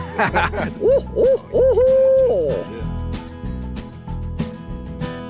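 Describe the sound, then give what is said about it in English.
A person imitates an owl with a few rising-and-falling hoots, the last one drawn out and loud; then a rhythmic music bed takes over. “Do you ever owl hoot when you're excited about something as a celebratory?”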